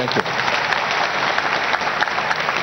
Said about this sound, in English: Clap for him.